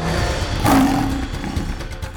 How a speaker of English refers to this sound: Fix let out a rough growl.